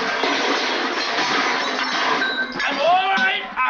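A large metal film canister dropped off camera during filming hits the floor with a loud, sustained clattering crash like trash cans toppling, followed by bright metallic ringing tones that waver and fade.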